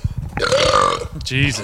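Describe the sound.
A long, loud, drawn-out non-alcoholic burp rumbles, rising into a croaky, voiced stretch before trailing off.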